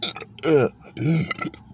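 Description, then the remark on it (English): A loud burp rumbles out in two drawn-out, croaking voiced bursts with a short pause between them, wobbling in pitch before trailing off. “Yes, a most righteous burp.”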